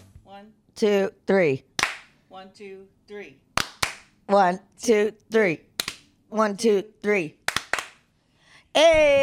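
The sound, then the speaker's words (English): Several sharp, isolated hand claps ring out at irregular moments in a hotel room while people talk over them, each clap a crisp, loud snap standing out against the conversation. “All right, let's clap.”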